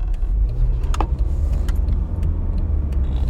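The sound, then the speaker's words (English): A car rolls over a speed bump inside the cabin, with a steady low road rumble and a brief jolt and rattle about a second in. No one speaks. “That's my theme song as I go over my speed bump.”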